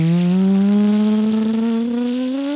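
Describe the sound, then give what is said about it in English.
A machine engine is turned on and runs loudly and steadily, its strong humming drone climbing gradually in pitch as it revs up, with no voices. “Oh, baby, listen to that engine purr.”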